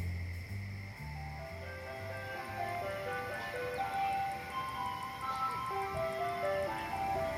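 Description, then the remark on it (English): An ice cream truck driving very slowly down a street just before dark plays a tinkly, looping music-box melody over a low engine rumble, the tune steady throughout, with no voices. “A truck came into view, playing music and driving very slowly down this poor egg street.”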